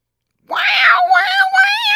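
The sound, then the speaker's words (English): A voice imitates a screeching cat, letting out one long, loud, wavering yowl that starts abruptly and holds its quivering pitch for about a second and a half. “You are a screeching cat.”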